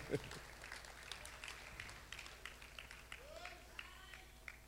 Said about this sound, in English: Clap for the Lord Jesus.